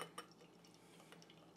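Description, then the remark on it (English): Beer, a 7% ABV double New England IPA from Arvon brewed with Citra, Mosaic and Amarillo hops, pouring into a glass, a soft, steady splashing hiss with a few small clinks and gurgles near the start and again near the end. Quiet, with no talking. “So let's go ahead and get this open and get it into a glass.”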